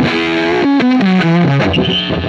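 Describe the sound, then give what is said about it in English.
A loud electric guitar played through a Pete Cornish Soft Sustain fuzz pedal plays a short descending run of sustained notes, thick and saturated with buzzy harmonics, ending on a held note. “The soft sustain sounds really, really good.”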